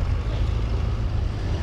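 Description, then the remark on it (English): A heavy truck engine roars as its turbo spools hard before launch, a dense, steady low-pitched growl held at high revs for the whole moment, with no voices over it. “He really needs nitrous on that truck. It's spooling hard up here.”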